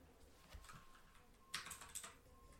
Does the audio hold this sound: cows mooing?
no